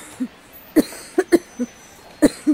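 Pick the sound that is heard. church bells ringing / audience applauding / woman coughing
woman coughing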